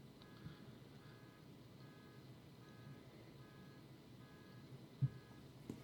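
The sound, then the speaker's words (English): A car alarm goes off outside in the neighborhood, a steady series of evenly spaced electronic beeps, muffled over a low background rumble, with no one speaking. “Somebody's car alarm's going off.”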